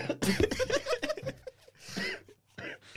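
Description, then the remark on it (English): Two rough, breathy coughs near the end, a short pause between them, following a burst of voiced, laugh-like sounds. The coughs are moderately loud. “I have a cough that I'm waiting to cough it.”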